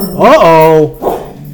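A dog lets out one drawn-out, tonal bark that slides up in pitch and holds before cutting off, followed by a shorter, softer yelp; it sounds fairly loud.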